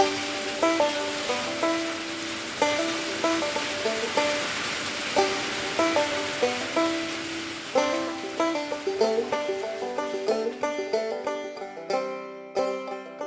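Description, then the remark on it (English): A loud, dense downpour with hail roars steadily at 5:49 a.m., the hail clattering and ringing against hard surfaces. Near the end the roar drops away, leaving a few fading metallic tones. “and what a downpour. Hail, so loud.”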